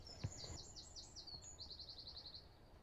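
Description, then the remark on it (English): A bird sings in the morning in a quick series of high, sweeping notes, followed by a rapid trill of repeated chirps, clear over faint outdoor background noise. “Birds keep you very still once you start listening to them.”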